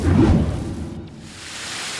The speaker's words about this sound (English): You can probably hear it. I'm near our magnificent waterfall, Wet Water Falls. It's one of the major sources of water here in the Chasm Valley.